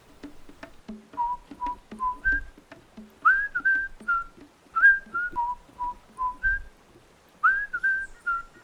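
A person whistles a bouncy melody of short, clear notes that step up and down in pitch, with brief pauses between phrases and faint low thumps underneath.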